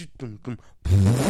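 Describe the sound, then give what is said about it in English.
A loud, buzzy fart sound effect blares in after a few short voiced bursts, sitting low and thick over a dense, full-sounding hip-hop beat for the rest of the moment. “There's a sound in the beat. Ooh, that. The fart sound? The fart noise, yeah, it totally.”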